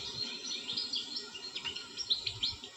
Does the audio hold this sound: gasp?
no